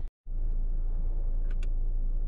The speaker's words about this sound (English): This has come to the end of our car ride, so thank you for tuning in.